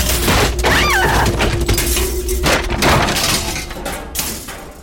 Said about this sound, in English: notice the slow creaking from overhead, until the ceiling cracked loudly as it started to cave in.